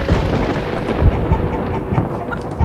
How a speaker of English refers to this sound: Thunder roared overhead, rattling the windows of every dwelling, as if nature itself knew the wickedness that was about to transpire.